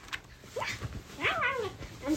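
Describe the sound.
A child pretending to be a puppy, like Bluey, imitates a dog with a few high, whiny yips and whimpering slides in pitch, moderately loud, with brief pauses between the calls.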